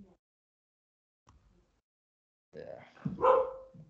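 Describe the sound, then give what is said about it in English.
After a stretch of near silence, a pet dog lets out a short cluster of two or three barks near the end, moderately loud, with no one talking. “And my dog is barking.”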